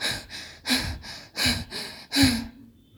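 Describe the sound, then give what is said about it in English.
Rapid, heavy panting through the mouth by a man whose nose is fully blocked from a cold: about seven breathy huffs in a quick, steady rhythm, alternating stronger and softer breaths, with no talking, then trailing off into quiet. “He then has to pant from his mouth, like me when I run very fast.”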